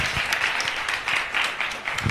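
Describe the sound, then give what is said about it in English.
A round of applause from an audience, largely people from community radio, for Madikana after a speech: steady, dense clapping that holds at an even level throughout, with no voices standing out. “Well, can we please give a big round of applause to Madikana for that?”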